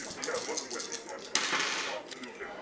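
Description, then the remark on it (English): Dice rattle and clatter, with a quick run of light hard clicks and one sharper knock midway as they tumble across a surface, fairly quiet. “Should I add a dice? Yeah. Let's add one anyway.”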